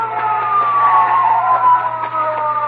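A police car siren wails steadily, its tone gliding slowly up and down over a low engine hum, with no one speaking.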